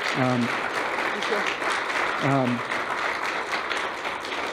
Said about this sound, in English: I think it's appropriate to appreciate Norma through applause, actually. If you would do that.